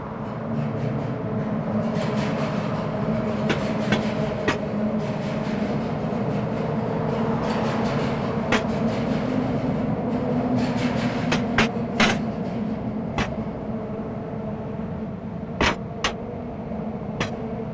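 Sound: train passing with whistle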